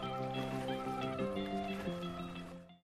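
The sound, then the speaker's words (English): A cold drink is poured into a glass for about three seconds, a steady gurgle whose pitch rises in small steps as the glass fills, with no talking. “Pour yourself a cold one.”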